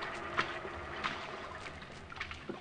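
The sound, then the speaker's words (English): Water sloshes and splashes steadily as a small inflated rubber boat moves toward shore, with several soft paddle-like splashes rising out of a continuous watery wash, moderately quiet. “We climbed the ladder through the hatch where an inflated rubber boat was waiting to take me to shore.”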